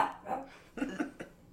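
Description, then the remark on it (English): A puppy gives a quick run of small, sharp barks and yips, about four in a row over a second and a half, moderately loud with no one talking. “Everyone's a critic. Hey, puppy.”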